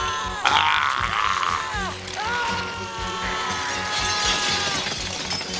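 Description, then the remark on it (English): Objects smash and shatter as a woman crashes her things down, with a loud, sharp crash near the start, followed by continued clattering and rattling debris under a high, wavering cry that runs through the rest. “that's when Renee stops being his mom, when she's crashing all her shit down”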